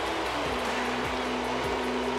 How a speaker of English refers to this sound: Listen to the crowd!